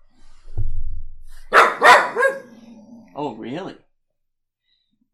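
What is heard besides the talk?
dog barking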